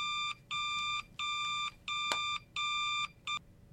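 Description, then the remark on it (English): A novelty telephone rings with bright, electronic buzzing tones in six evenly spaced bursts, the last one short, loud with no voices. “What is that? Is that the bat phone?”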